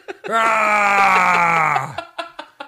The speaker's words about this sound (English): Who yells like that? Cartoon characters. That's who yell like that.